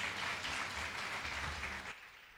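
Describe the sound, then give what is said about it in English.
Steady audience applause welcoming a speaker on stage, many hands clapping in a dense, continuous wash that holds level and eases slightly toward the end, with no voices over it. “So dear brothers and sister, let's welcome Professor Dr. Suresh Govind on stage with big round of applause.”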